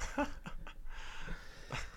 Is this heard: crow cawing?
no